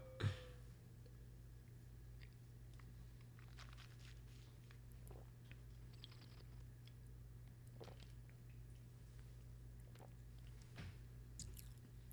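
Quiet mouth sounds of someone tasting wine: scattered small slurps, smacks and wet squishes spread over several seconds, with a steady low hum underneath and no talking.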